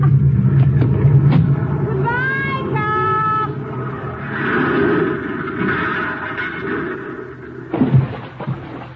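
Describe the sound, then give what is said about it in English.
A car engine rumbles low and steady as the driverless car, put in first gear with the hand throttle pulled out a little and the wheel turned, creeps off toward a river below the road; a brief whining rev rises early on, with clicks at the start and a thump near the end. “I place the car in first gear. And then I pull the hand throttle out a little, turn the wheel, and get out.”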